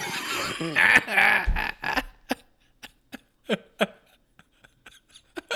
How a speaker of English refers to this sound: Uh-oh, are you okay? Oh, no. Are you all right? I just had a life imitates art moment because I started laughing and then I started coughing.